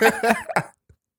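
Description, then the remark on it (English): A fairly loud burst of two or three harsh laughing pulses ends in a short cough, followed by a faint catch of breath and then silence. “He laughs, but he kind of coughs a little bit after.”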